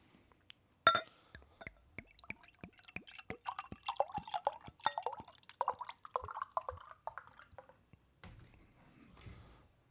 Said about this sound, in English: Beer's poured out. There's not much head here. There's like a little thin-laced head, at least on my end.